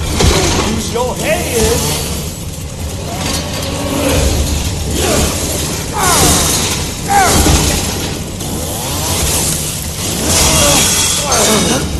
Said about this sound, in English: One of the great moments is, like, I think either you block or you swing at the same time and you get this grinding of the chainsaws against each other.